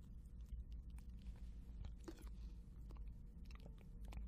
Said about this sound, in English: And this is sort of... apologize for any slurping sound of our yummy vanilla ice blendeds.